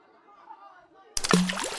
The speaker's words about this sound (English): Whoa, it sank. You're testing if objects can float in water. Oops, did that one splash you?